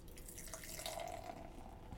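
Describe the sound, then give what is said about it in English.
Beer, an English brown ale, pours steadily into a glass in a continuous gurgling splash, with a faint rising ring as the glass fills. The sound is alone for about two seconds. “And the pour.”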